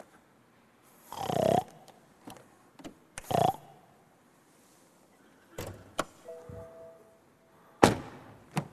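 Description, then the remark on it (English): A pig grunts and snorts in irregular bursts: a long, loud, rough grunt early on, then shorter snorts and faint knocks spaced out over several seconds, with no one talking. “I hear a pig.”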